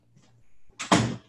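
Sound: door slamming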